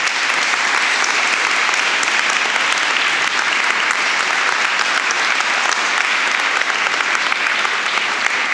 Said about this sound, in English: So I'd love it if you could give those guys a big round of applause.